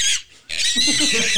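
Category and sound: animal, pig oinking sound effect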